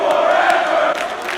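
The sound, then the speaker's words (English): A loud wrestling crowd chanting "Fight forever!" together, a dense roar of many voices holding steady before dipping briefly and surging again, with no single speaker standing out. “Hey, this is what the crowd's saying.”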